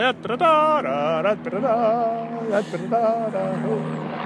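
A helicopter drones overhead, a steady low engine hum running through the whole moment while people talk over it in animated, rising voices.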